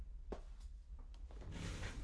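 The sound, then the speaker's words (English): A door that will not stay fully shut shifting in its frame: a few soft wooden knocks and clicks, then a rising rustling scrape as it drifts, quiet with no voices. “even though I literally have my door shut, it's still not shut.”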